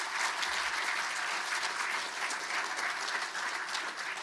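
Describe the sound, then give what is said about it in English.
A crowd claps steadily for a young speaker of the Ngunnawal language, a dense, sustained wash of many hands with no pauses and no talking over it, holding an even loudness throughout. “Ladies and gentlemen, another round of applause, please.”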